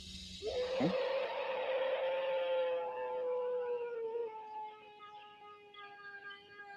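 A long, drawn-out animal howl lasting about 9 seconds, heard in woods where a man is filming mushrooms on trees and logs; it rises sharply and then holds a steady, slowly fading tone, with rich overtones and a faint reverberant outdoor background.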